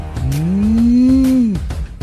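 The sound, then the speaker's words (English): On a morning show marking National Farm Animals Day, a person imitates a cow's moo: one long, loud, low voiced call, slowly rising in pitch, held for over a second, then dropping off abruptly. “Give me a cow.”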